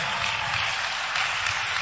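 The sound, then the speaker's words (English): A church audience, standing, claps for Jesus in a steady, dense wash of applause that fills the whole moment at a fairly loud, even level, with no individual claps standing out and no voices. “Clap for Jesus.”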